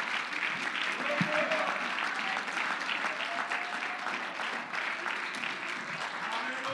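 A church audience claps their hands in thanks to God, in a dense, steady wash of applause that runs throughout, with a faint murmur of voices and a few brief tonal notes beneath the clapping.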